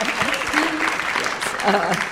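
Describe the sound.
A room full of people applauds steadily for a panel speaker being introduced, a dense wash of clapping with some voices mixed in, moderately loud.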